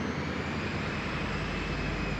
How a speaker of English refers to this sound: Padilla and Mutantu disappear inside the plane, and a few moments later, the engines roar to life as planned. But then, airport employees watched in shock as the plane shot out of its hangar and sped dangerously across the tarmac.